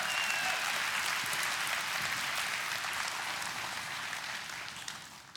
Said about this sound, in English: And here's a tangible evidence right here. Give the Lord a hand clap of praise right now in the house of God.